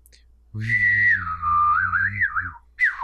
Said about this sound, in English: Can you do that? Like the hum whistle? Yeah, the hum whistle.